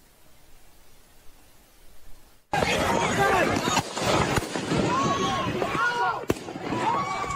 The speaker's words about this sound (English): Now, listen again, because you're going to hear a bunch more gunshots that aren't accounted for.